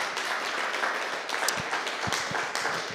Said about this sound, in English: Why don't we give him a round of applause as he comes?